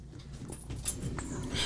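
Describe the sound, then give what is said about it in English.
A big dog pants and shuffles around while searching for his bully stick under a table, with soft breathy bursts and faint scuffling movement over a quiet background, and no one talking. “he's like just this mellow big dog that's like freaking my other dog out a little bit”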